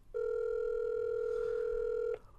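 A single steady electronic ring tone on an outgoing phone call placed live on the show All Up in Your Geek, one unbroken two-second burst heard clearly through the line before it cuts off, with no one talking.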